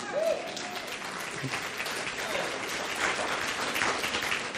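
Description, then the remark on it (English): An audience claps steadily, a dense, even wash of many hands sustained at moderate loudness for several seconds, with a faint voice briefly audible near the start. “It is okay to clap on occasion.”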